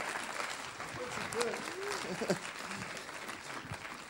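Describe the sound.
An audience claps steadily, a dense, continuous patter of many hands, with a few faint voices and a brief shout rising over the applause.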